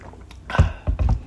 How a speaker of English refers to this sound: We're drinking all the water today, which reminds me of that meme I saw.